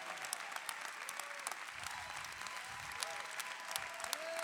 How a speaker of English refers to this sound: Come on, keep clapping.